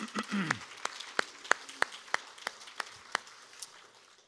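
Congregation applause at a morning church service, thanking a woman who has just shared: a broad wash of many hands clapping, with sharp, evenly spaced claps standing out in a steady rhythm. A brief voice sounds at the very start.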